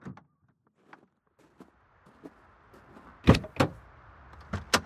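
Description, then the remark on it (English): A few soft clicks, then a low vehicle hum rises as the car pulls over and stops, followed by three sharp, loud mechanical clunks. No one speaks. “It sounds like they're stopping.”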